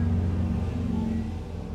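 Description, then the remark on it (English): Loud, deep engine rumble from motorcycles revving and passing by, a steady throaty drone with low harmonics that eases off slightly toward the end, with no one talking over it. “Sorry about the motorcycles.”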